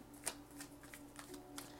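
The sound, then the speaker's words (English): A Rider-Waite tarot card deck being shuffled, a quick series of soft riffling snaps and papery flutters in irregular bursts over a faint steady hum, with no talking. “So, shuffling the Rider-Waite tarot deck.”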